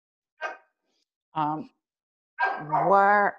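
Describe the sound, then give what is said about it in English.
A dog barks three times, starting with a short sharp yip, then a fuller bark, and ending in a longer, drawn-out, whining bark, with silence between each. “I'm sorry, my dog just went and that distracted me.”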